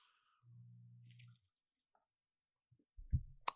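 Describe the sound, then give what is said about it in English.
A wet slurp and swallow of beer sipped from a can near the end, ending in a sharp little click, after an earlier low, steady hum. No one speaks. The beer is a hopped one called Smells Like Green Spirit. “A surprise, sneaky beer. I have the fitting Smells Like Green Spirit. I'm going to take a sip.”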